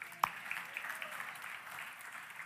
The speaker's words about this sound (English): Boys, can you come up to the stage and help me give a round of applause for my sons?